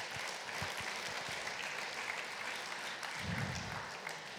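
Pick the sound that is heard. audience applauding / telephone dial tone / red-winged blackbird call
audience applauding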